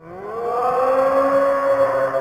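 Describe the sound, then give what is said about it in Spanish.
A lighthouse foghorn sounds one long, loud, droning blast that swells in at the start, then holds steady with a rich, slightly rising tone for a couple of seconds. No voices are heard. “La sirena llamó.”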